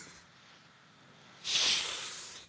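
A quiet pause, then a single bright spray hiss from a perfume atomizer that bursts loudly and slowly fades over about a second, with no talking.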